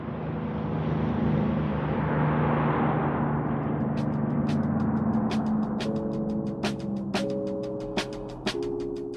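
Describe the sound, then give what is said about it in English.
A steady, broad roar of street traffic on University Avenue, with light rail and a local bus stop, and a distant highway hum beneath it. Partway through, a rapid series of sharp clicks and a sustained tonal whine join the rumble. “And even today, you'll hear the light rail speeding down University Avenue. Students being bold and young at the local bus stop, along with the roar of that life-changing highway just in the distance.”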